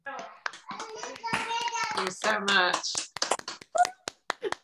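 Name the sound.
audience applause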